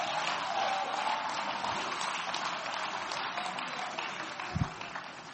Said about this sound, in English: Come on, clap your hands. Clap your hands to the Lord and give Him praise.